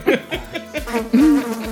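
A large flying bug, a sarcophagid fly, buzzes loudly, its low droning hum wavering and swooping up and down in pitch as it moves around, with no voices present.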